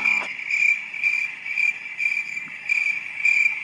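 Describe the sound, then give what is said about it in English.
A cricket chirping sound effect played from an app: a steady, shrill, high-pitched trill pulsing in regular bursts about every half second, fairly loud, with no voices. “Crickets are available.”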